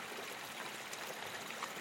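A gently flowing river stream in a forest babbles steadily and softly, a continuous watery trickle with no voices or other sounds.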